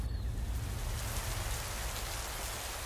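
Sudden heavy rain pours down steadily after a light drizzle, a dense hiss of drops pattering on a surface with a low rumbling undertone and no voices.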